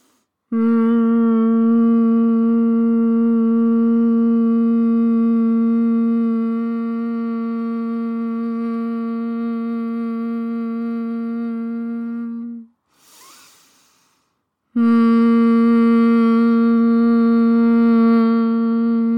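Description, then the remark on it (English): A steady, sustained hum on one low pitch, humming out the breath in a breathing exercise, holds for about twelve seconds, broken by a brief, audible long breath in before the humming resumes at the same level. “Wherever you're at, we'll take one more long breath in and a hum the breath out, and that'll be the final one.”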